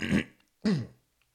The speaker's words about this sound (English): And so I have to keep clearing my throat, and I do apologize. I'll try to drink some more water.